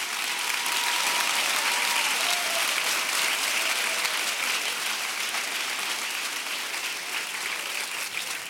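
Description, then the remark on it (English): A large crowd claps steadily for several seconds, a dense, sustained wash of applause with faint cheering voices mixed in, filling the space evenly from start to finish. “I wish somebody would clap and thank God for the journey.”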